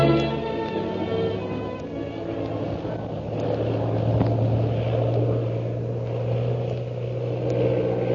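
A steady, droning propeller engine roars continuously, its pitch wavering slightly as Shanghai Lil stunts her plane to escape a pursuing aircraft, with a constant low hum throughout.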